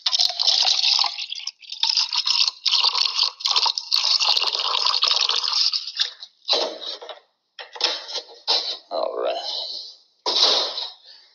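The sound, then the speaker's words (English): Water splashes and trickles steadily as it is poured into a glass for drinking, for several seconds before breaking into shorter uneven gurgling bursts. Fairly loud. “May I have some more water, please? Sure, I'll go fix you some.”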